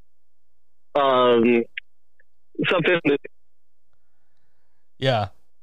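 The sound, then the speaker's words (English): Thin, narrowband phone-line speech arrives in short, abrupt fragments, cutting out to dead silence between bursts, as if the connection keeps dropping. “No, that's not gonna make a difference. That's just the phone connection.”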